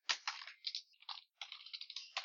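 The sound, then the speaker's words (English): A harsh shattering sound effect: a run of bright, crunchy bursts and crackles tumbling over about two seconds, with a short gap midway and no voices. “Why is there a hideous shattering sound?”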